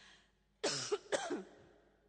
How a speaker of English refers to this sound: It doesn't mean that. It means I have a cough.